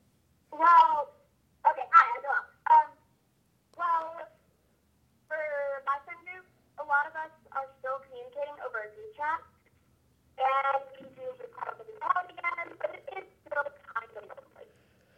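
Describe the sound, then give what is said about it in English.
A thin, narrow-band voice over a phone line, garbled and choppy, cutting in and out in short bursts with brief dropouts between them, so none of the words come through clearly. “Sorry, your phone was breaking up.”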